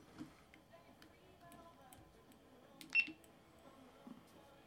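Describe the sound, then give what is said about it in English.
A phone gives off a short, high electronic beep, quiet and brief, over a faint background of ticking and murmur. “So, that shit's beeping at me.”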